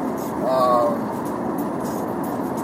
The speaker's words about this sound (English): I like this road. It's really soft. So the road noise here isn't too bad, honestly, if you think about it, compared to like other cars that I've been in